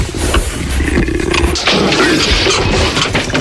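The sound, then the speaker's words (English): A leopard that has escaped from a zoo, in a Progressive insurance advertisement, growls loudly and continuously for a few seconds, a rough, rasping rumble with a pulsing low throb and breathy noise layered over it. No one speaks. “We're live from the zoo where a leopard has escaped.”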